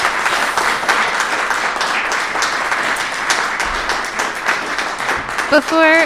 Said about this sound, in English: We want to extend a big thank you to all six candidates running for mayor of City of Moab. Public discourse isn't easy, but it's always important, and we thank you. Can we have a small round of applause from our live audience? Thank you.